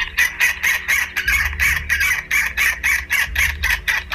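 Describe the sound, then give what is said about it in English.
A South Polar Skua (Stercorarius maccormicki), a bird that breeds in Antarctica, gives a loud, steady series of harsh, nasal calls, roughly two or three per second, while gusts of low wind rumble underneath at times. “It's today's featured feathered friend, the South Polar Skua.”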